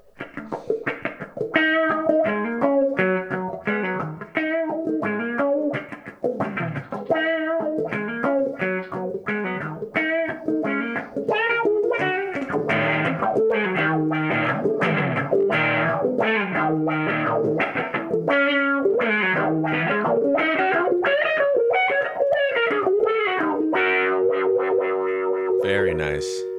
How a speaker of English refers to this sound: Yeah, and that wah gives it a nice tight wah sound because you're filtering the entire board.